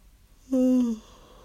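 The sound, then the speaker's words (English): A single voiced yawn from a tired person, about half a second long, with a drawn-out tone that slides downward before fading, heard alone against quiet background. “I'm sorry for yawning in your ear.”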